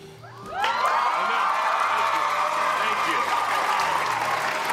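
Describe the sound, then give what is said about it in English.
An audience bursts into sustained applause after a brief quiet start, with scattered cheers and whoops mixed into the steady, loud clapping that continues to the end. “Thank you for clapping, because it's hard to turn down a cameo, so I appreciate that.”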